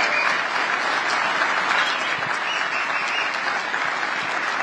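A large audience applauds steadily, a dense, continuous wash of clapping that holds at an even, fairly loud level throughout, with no voices standing out.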